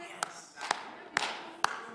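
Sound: weak clapping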